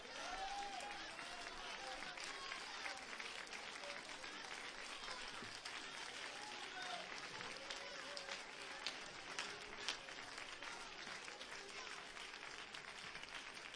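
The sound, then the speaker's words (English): An audience claps hands steadily for over ten seconds, a dense, sustained wash of applause with scattered voices and cheering mixed in underneath. “Stand to your feet, clap your hands, and rejoice with me right now.”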